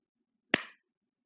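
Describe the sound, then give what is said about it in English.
One sharp hand clap sounds alone, crisp, with a short ringing tail fading into silence. “We don't have to work to hear the clap.”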